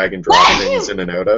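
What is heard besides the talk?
sneeze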